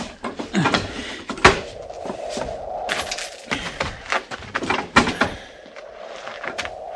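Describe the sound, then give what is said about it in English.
A door is opened with a series of knocks and clatters, a drawn-out creaking squeal, and more clunks and scrapes, with no voices. “Yes, sir. Get the door.”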